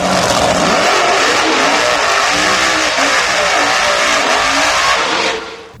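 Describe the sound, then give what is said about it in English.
Loud racing car engines roar and rev continuously for several seconds, a dense mechanical howl with rising and falling pitch, before cutting off abruptly near the end. “You know, that didn't sound like Ferraris. that's what we had.”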